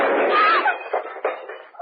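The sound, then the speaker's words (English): A single loud handgun shot, fired by accident by a woman being shown how to pull the trigger, cracks out and rings off over about half a second, followed by a few softer knocking thuds; the bullet broke a vase. “You were holding that gun near your body when it exploded.”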